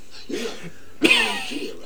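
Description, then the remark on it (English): Two harsh, raspy coughs from a man coughing up blood from tuberculosis, a lighter one followed by a louder, rougher burst that trails off into wheezy throat noise. “Oh, yes, this is healthy cough blood.”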